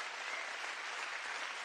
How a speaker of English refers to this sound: Give the Lord a hand clap of praise in the house today.